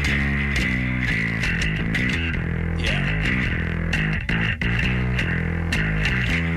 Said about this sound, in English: So hear this part right here, and then I'll play the isolated bass again just to give you some context. And then here it is.